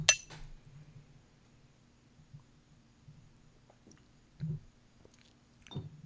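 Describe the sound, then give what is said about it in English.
A single bright, ringing clink of bottles of saison beer touching in a toast right at the start, then quiet low rumbling and a few soft taps and clicks. “I'm trying to find a good clink. There we go. Let's use the bottle.”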